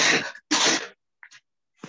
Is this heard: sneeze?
yes